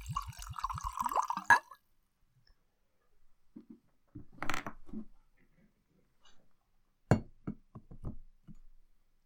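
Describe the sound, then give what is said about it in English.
Scotch glugs briefly into a glass with a rising gurgle, then stops, followed by a scattering of light knocks and taps of glassware set down. No one speaks. “Shall we, without further ado, stop torturing ourselves and open and pour?”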